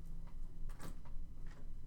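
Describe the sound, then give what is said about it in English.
A classroom door is handled and opened as class wraps up: a few short clunks and a brief scraping rattle against a steady low room hum, with no one speaking. “And so as class wraps up here, and I open up the door, and you go on.”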